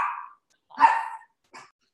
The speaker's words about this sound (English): Our guys came home and so the dogs were barking and all that.